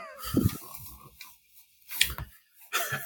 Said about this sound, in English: I can hear you scratching. Oh, sorry.